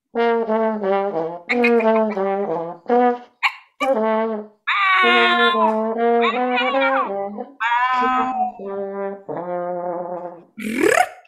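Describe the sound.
A trombone plays short, bending notes in a call-and-response with a human voice imitating cat meows, purrs and yowls, the sliding pitches mimicking feline communication sounds, in a first-ever performance surveying the communication sounds cats and humans use when they speak together.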